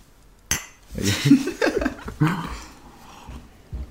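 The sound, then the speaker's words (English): A sharp clink of glasses tapping together in a birthday toast, followed by a few lighter clinks and some soft laughter and murmuring. “Should we cheers? Little cheers for Hannah.”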